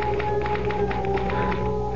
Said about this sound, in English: I had to get back to that infernal machine. The typewriter.